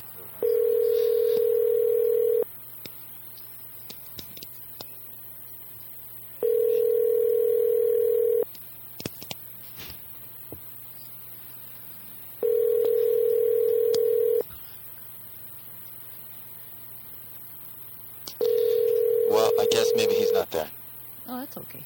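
Telephone line tones after a number is dialed: a steady, low electronic tone comes in four even two-second bursts separated by pauses, with faint clicks and a brief noisy burst near the end.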